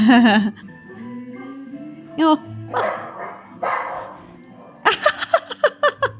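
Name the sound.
dog barking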